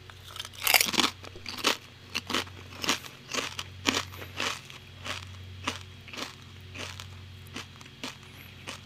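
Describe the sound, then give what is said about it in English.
Loud, crisp crunching of kettle chips being chewed, with a sharp bite at the start followed by a steady run of brittle crackling chews that gradually soften, no voices present. “"Is kettle chips a good source of carbon fiber in my diet?"”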